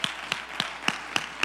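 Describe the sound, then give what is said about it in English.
An audience claps hands together in a steady, quick rhythm, six sharp unified claps in a row with a faint room murmur underneath and no talking. “Come on, clap your hands if you believe it right now.”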